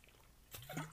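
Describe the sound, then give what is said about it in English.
After a moment of near silence, someone takes a quick swig of water, giving one brief, wet gulping slurp that stays fairly quiet. “So, with that being said, let me take a swig of my water.”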